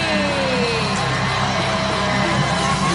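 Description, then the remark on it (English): A huge wrestling arena crowd roars and cheers wildly for Jeff Hardy, a dense, sustained wall of noise with scattered whoops and yells rising out of it, loud and continuous throughout. “The crowd your goes winner, crazy.”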